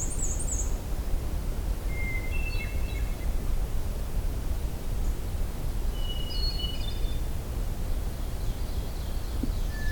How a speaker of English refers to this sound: So we have mostly black and white warbler, hermit thrush, occasional black-throated green.